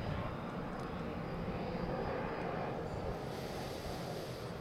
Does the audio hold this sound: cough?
no